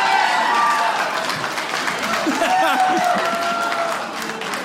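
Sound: audience clapping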